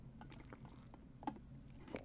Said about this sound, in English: I am going to take a sip of water real quick, though.